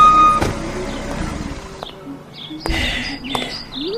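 A car rolls up at a house during a pizza party, with a low engine rumble, a couple of sharp clunks breaking through, and birds chirping faintly in the background. No one speaks.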